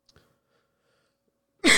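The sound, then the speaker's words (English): A single sharp, explosive cough bursts out loudly after a near-silent pause, with only a faint brief noise near the beginning. “Jesus, a nasty cough through this podcast.”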